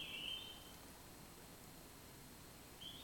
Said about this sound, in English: Maybe, is that a cell phone or a bird? Oh, that's a cell phone. Thought, that's beautiful.